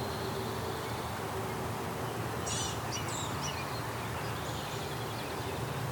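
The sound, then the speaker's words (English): A gnatcatcher and a house wren call outdoors, with a short cluster of thin, high squeaky notes and chatter midway through, over a steady background hiss. “So gnatcatcher on the right. House wren on the left.”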